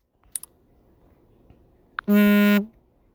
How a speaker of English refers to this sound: I apologize for that. I silenced my phone now.